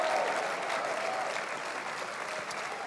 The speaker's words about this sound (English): If you receive that one more time, go ahead and clap your hands, all ye people, and give God a mighty, mighty shout.